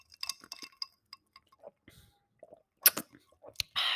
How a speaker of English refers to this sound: let me just take a sip of my matcha latte real quick.